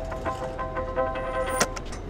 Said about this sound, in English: …, we're on a boat. You can hear the roar of the engines. We're underneath the Brooklyn Bridge now. We're about to cross New York Harbor to Manhattan to go to the New York Federal Reserve.